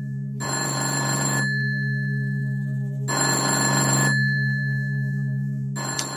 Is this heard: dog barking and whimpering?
no